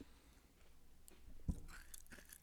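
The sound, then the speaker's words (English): Crunchy chewing into the microphone: a series of crackly, irregular bites and munches with one sharper crunch midway. No talking, just the wet and crisp sounds of food being chewed. “Crunchy McChewerson. Crunchy McChewerson.”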